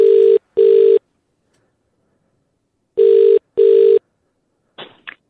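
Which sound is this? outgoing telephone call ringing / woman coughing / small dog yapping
outgoing telephone call ringing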